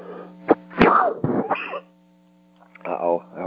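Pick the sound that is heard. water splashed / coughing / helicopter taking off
coughing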